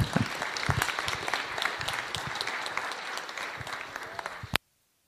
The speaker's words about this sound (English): Let's clap for him now.